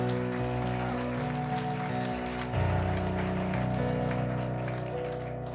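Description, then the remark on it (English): A church audience claps steadily for several seconds as people are being seated, a dense patter of hands over sustained, chord-like instrumental music that keeps playing underneath. “In Jesus' name, let's give him a hand clap as we're being seated.”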